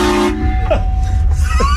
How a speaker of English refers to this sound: has a huge trucker horn on his truck. Check this out. It's about to get train horned and she doesn't know.